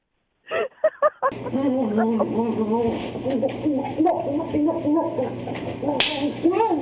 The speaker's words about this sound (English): Oh, Jim even got an ass slapping in there.